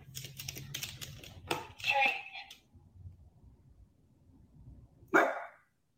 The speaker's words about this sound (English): Nope, you barked. No treat. No. Yes, no treat. No.